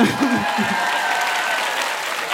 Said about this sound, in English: I also love applause. Just the thought.